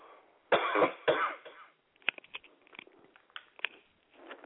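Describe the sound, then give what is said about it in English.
A person battling a cold gives two loud, harsh coughs close together near the start, followed by quieter scattered throat and mouth noises, small clicks and breathy rustles, with no talking. “Excuse me, Anne, I have a cough. 1 second.”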